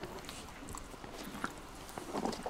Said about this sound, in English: He's having a good chew on his tasty bit.